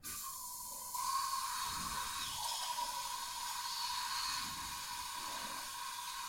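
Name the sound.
hairspray being sprayed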